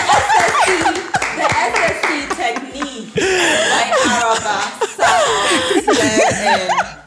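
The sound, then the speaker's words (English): A crowd claps and cheers loudly for several seconds, the steady patter of hands mixed with whoops, laughter and excited voices, briefly dipping before swelling again. “Can we clap?”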